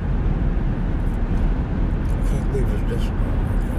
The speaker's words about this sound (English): Oh my gosh, traffic is horrendous out here this morning.